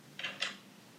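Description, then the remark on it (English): Two quick, crisp rattling bursts of dice rolling in a dice roller, one right after the other, fairly quiet, with nothing else around them. “Now, this is the dice roller.”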